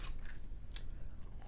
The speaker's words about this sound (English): I'm sorry I'm eating French fries.